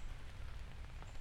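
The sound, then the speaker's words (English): Steady moderate rain from a rainstorm patters continuously on the canopy of huge trees along a trail, a dense, even hiss of drops with a low rumble beneath, unbroken throughout. “Moderate rain kicking in, hitting the canopy of the trees.”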